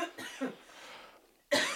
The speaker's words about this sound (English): Coughing. Coughing break. whew.